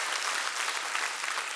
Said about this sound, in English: Oh, come on, church, clap your hands.